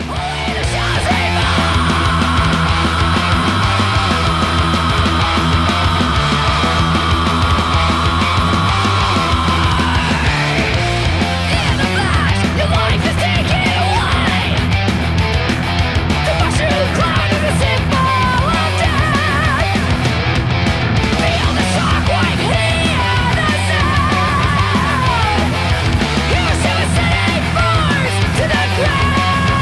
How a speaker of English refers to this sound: And you'll hear one of the most badass screams you'll ever hear in all of metal. I'm not kidding. It's amazing.